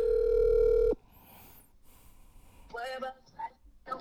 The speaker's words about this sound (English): Hold on. Oh, I'm going to make another phone call. I think she'll answer.